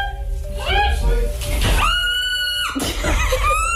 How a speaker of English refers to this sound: And like, you might be listening thinking, oh, that parrot sounds like it's in pain. No, it's not. It's having a great time.